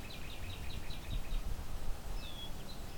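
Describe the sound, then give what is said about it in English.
A black-billed cuckoo, a few feet away and preening, gives a quick run of high, soft chirps, then a single thin, falling whistle. This is one of its calls, not its song. It is heard fairly faintly over a low outdoor rumble with no one talking. “And it makes that call every few seconds while it's preening.”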